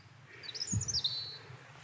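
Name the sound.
european robin singing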